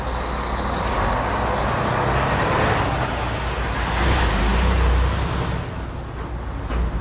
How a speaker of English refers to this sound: Truck stop, more like a truck start. Am I right? Constantly going.